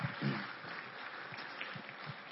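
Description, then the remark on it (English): An audience claps for everybody who cooked and decorated to get the celebration ready, in a dense, steady wash of applause that holds at an even level for the whole stretch, with a few faint low murmurs mixed underneath. “By the way, we should clap for everybody that cooked and decorated to get that celebration ready for us.”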